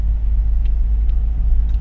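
A steady, deep engine rumble from idling cars stopped at a roadblock on a park road while a bull elephant crosses, three or four cars from one direction and two or three from the other, continuous and low-pitched throughout, with faint brief higher sounds over it and no talking.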